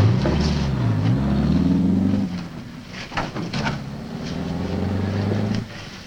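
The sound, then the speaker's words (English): A car engine rumbles steadily as the car drives away, its low drone rising and falling in pitch with a few sharp knocks midway, then drops off abruptly near the end. No one speaks. “It sounds like the car is driving away.”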